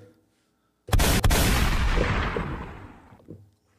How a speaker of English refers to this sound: You know, it ain't an episode without the gunshots.